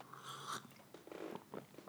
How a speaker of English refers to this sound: Can be allowing yourself a delicious sip of tea while you're recording a podcast.